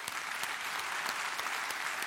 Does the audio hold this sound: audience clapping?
yes